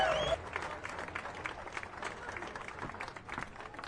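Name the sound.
audience applause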